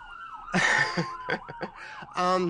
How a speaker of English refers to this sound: Can you hear those sirens?